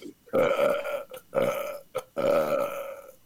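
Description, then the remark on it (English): Three long, loud, croaking burps follow one another, each drawn out and gravelly with brief pauses between them. “Just burp.”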